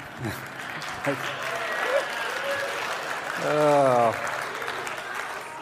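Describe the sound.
An audience claps steadily throughout in a dense, even patter, with scattered voices and a brief drawn-out vocal sound rising above the clapping near the end.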